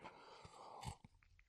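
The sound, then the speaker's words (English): A quick sip from a drink, with a soft slurp and a muffled swallow standing out briefly against a quiet background hiss. No one speaks. “Now, so, let me have another sip.”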